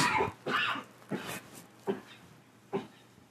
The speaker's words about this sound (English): Girl, I don't even know what I was coughing on.